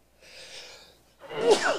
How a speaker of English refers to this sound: Bless you. I must be allergic to something in the woods here.